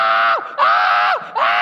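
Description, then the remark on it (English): A voice imitates a child's scream, the Hawaiian scream heard around 12 o'clock at night: three loud, shrill, sustained wails in quick succession, each sliding down in pitch at the end, with short gaps between. “Then, like 12 o'clock at night, you hear the Hawaiian scream.”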